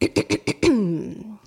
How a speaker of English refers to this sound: Did you clear your throat before you did the read? I did clear my throat before I did the read from our local sponsor.